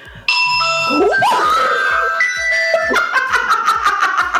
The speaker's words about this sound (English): is that your ringtone? That's also my ringtone. Well, someone forgot to put their phone on silent, so sorry about that.